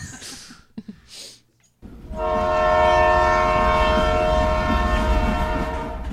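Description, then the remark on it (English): After a couple of seconds of faint shuffling and near silence, a loud train horn blares continuously over the heavy rumble of a train running on the rails as it increases speed. “The train is being increased in speed.”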